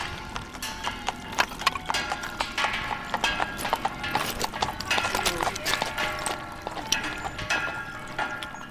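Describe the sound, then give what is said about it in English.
Horse hooves clip-clop steadily and densely, as if several horses are moving, with a busy murmur of voices and general bustle in the background. “Lots of fires and moving wood involved lots of horses.”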